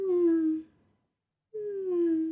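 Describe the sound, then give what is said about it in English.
A pet named Sam snoring in two drawn-out, whistly, moan-like breaths, each slightly falling in pitch, separated by a short silent pause. No one speaks. “Can you hear Sam snores? I can.”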